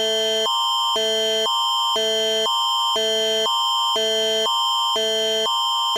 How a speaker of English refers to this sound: Now that, of course, is the province's Amber Alert system, and that alert went out over all devices. It went over television as well.